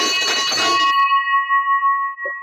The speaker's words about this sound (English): All right, ladies and gentlemen, get ready for the victory bell. If you have headphones on right now, you might want to pull them back because I'm going to blow this victory bell